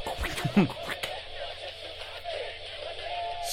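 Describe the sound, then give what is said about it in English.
DJ record scratching cuts through a dense, noisy rock track, with a few quick rising and falling pitch sweeps early on before the music carries on steadily underneath. “Man, the fucking wiki scratching is bad.”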